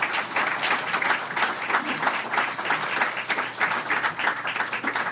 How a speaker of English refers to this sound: And why did they applaud for him and not me?